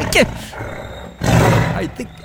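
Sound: tiger roaring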